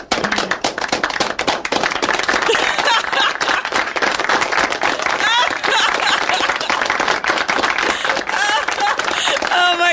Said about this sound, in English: It's the wrong applause.